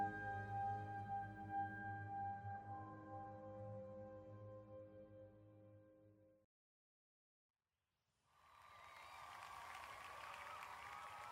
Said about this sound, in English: Under the clamor of the crowd, Samar approached the body of the beast. I could feel an electric anticipation build, the clapping and cheering decreased slightly, just waiting to explode even louder.